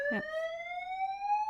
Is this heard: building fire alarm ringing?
yes